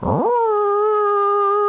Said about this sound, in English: I blow the conch shell in the morning.